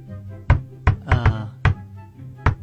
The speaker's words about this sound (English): Yeah, you recognize that knock, right? Sure. Sure. Yeah. Yeah, it has. Are you asking me to name it? Does it have a name? It does. It has a name.